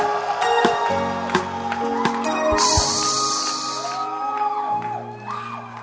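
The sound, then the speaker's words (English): An audience at a church service claps and cheers for people leaving their seats as they are being saved, with whoops and shouts rising over scattered sharp hand claps. The crowd noise stays loud and steady for about six seconds. “Please clap for them as they go.”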